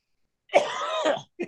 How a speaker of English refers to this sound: Dude, are you still sick? Well, when you fucking scream in your act and you have a cough for an hour and 20 minutes every fucking weekend and you do 19 podcasts a week, it's kind of hard to get over a cough.